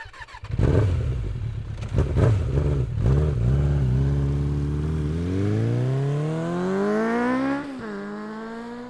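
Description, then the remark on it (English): A motorcycle engine starts up with a few sputtering revs as a rider rides off on his bike, then accelerates away steadily, its pitch rising through the gears before easing off near the end. No voices are heard. “The devastated horseman rides off on his bike.”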